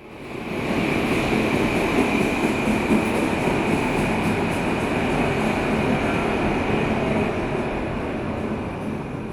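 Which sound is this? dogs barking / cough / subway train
subway train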